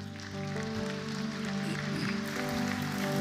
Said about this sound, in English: Lord, thank you so much. Let's just give applause to these.